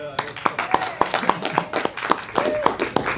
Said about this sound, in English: Same 10 people applauding.